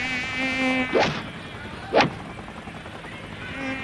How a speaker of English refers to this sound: Sheesh, these mosquitoes are brutal. I think that one's got shoulders.